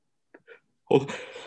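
A single sharp sneeze: two faint catching breaths, then an abrupt loud burst that trails off with a breathy tail.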